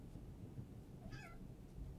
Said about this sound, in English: Your cat wants to get out. Fine. Oh, let her.